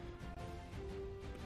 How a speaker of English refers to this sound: Oh my God. I'm burping.